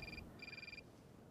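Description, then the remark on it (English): A flip phone ringtone trills in two short electronic bursts, bright and warbling, with a brief gap between them over a steady low background rumble. “Let's see, the cell phone, flip phone, baby.”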